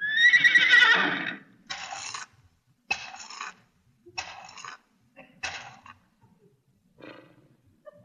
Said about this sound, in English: Yes, sir, that's really an educated horse. Now, watch this. Yeah. Hey, boy. Now, pay attention, horsey. What is 2 and 2?